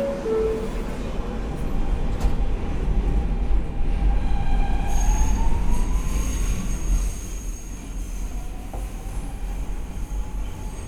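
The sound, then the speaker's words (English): A subway train rolls along after its doors close, with a steady, loud low rumble, while a rising electric motor whine and a thin high-pitched tone come in partway through as it picks up speed. “We're on the right car to just jump off, run up the stairs, and out the station.”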